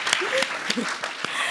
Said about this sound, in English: Yes, clap for a bad bitch. Yes.